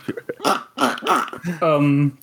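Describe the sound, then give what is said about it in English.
A loud quacking fart: several short reedy, duck-like blats in quick succession, ending in one longer sustained buzzing honk. “Wow, you didn't just fart. Like, you, something died.”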